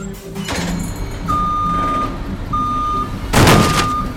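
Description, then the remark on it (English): A milk delivery truck reverses over engine rumble, sounding three long, steady high-pitched beeps, and a loud, harsh crash as it hits a building breaks in just before the last beep. No one speaks. “You crashed into the building.”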